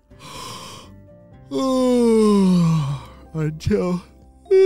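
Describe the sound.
A voice performs an exaggerated yawn: a breathy inhale, then a long, loud, drawn-out groan sliding down in pitch, followed by a few short stretching vocal sounds.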